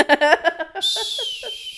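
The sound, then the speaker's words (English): A person whistles a single long, high note that glides slightly downward, like calling a dog, after a few seconds of talking; low voices continue faintly beneath the whistle. “Okay, well, I would go to an empty parking lot, you know, walk out to a field and go, you know, whistle.”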